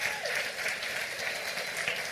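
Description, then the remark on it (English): A crowd applauds its pastors steadily, many hands clapping in a dense, even patter that holds at a moderate level throughout, with no voices standing out. “I would like you to give your pastors a hand clap.”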